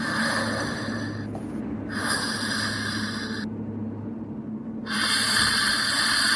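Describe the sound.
A voice imitates soft, slightly labored sleeping breath: a few slow, airy inhales and exhales with brief pauses between them, steady, with no talking.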